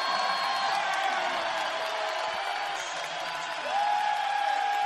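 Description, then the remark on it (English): A packed crowd at a sold-out basketball game inside the Fertitta Center roars and cheers steadily as coach Sampson gets them on their feet after a charge gives the Cougars the ball, a dense wall of noise with whoops and whistles rising through it, swelling louder at the end. “Look at Sampson fired up, getting this crowd on their feet inside the Fertitta Center.”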